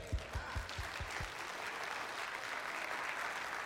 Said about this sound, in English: Hey, that deserves a hand clap.